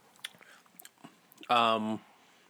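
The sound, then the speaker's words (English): Soft, wet mouth clicks of someone chewing a green candy for about a second and a half, then a short, loud hummed 'mm' from the same person. “That's what I just popped.”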